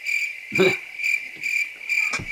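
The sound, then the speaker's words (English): Steady, high-pitched cricket chirping pulses in a continuous rhythm, fairly loud, with a couple of brief low thumps underneath and no talking. “Crickets.”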